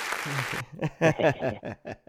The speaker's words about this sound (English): Man, we had to go ahead and get some hand claps for you, bro. We had to get some hand claps for you.